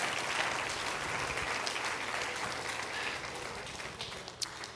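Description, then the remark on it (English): A standing church audience claps their hands to Jesus together, a dense, steady wash of many hands clapping at once that holds for several seconds, full before easing slightly at the end. “Let's clap our hands again to Jesus, who's the ultimate second mile walker.”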